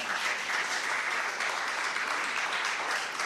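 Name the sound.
smattering of applause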